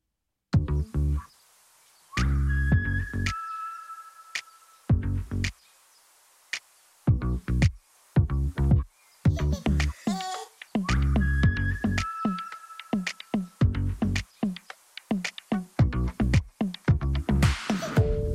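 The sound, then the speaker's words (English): A whistled melodic hook floats over a punchy, stop-start pop beat with deep bass thumps, the bright tune recurring in short phrases across the track with no singing. “And this one has a glorious hook here with the whistling.”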